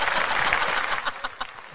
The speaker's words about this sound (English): RB3, that makes me feel like you didn't like my sound cue. It's just me clapping.